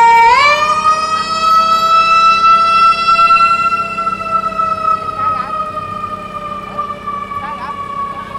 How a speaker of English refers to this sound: and now, as we are recording in Times Square, I am getting an ambulance passing right by.